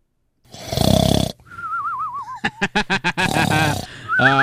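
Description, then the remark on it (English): A voice imitates cartoonish snoring: a loud rasping snore, then a wavering whistle, a quick run of sputtering puffs, another raspy snore, and a final rising whistle. “You put me right to sleep with Star.”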